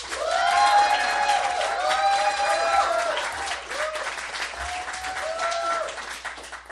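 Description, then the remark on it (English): A small audience claps loudly and steadily for several seconds to vote for the winner of a debate, with excited whoops and cheering voices rising over the applause before it tapers slightly at the end. “Impartial judge, who received the winning applause?”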